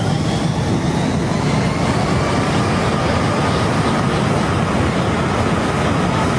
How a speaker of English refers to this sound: I just want to know what it's like to be standing when a jet, when it's fucking taking off.